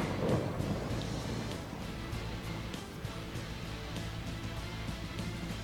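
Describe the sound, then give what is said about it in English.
Deep, sustained rolling thunder rumbles steadily throughout, loud, with a dense low roar and a hiss of stormy noise over it and no voices. “I had to fill up the music cue, so lots of thunder.”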